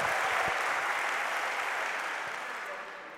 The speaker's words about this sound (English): I'm waiting for the applause, by the way. Yes, thank you very much.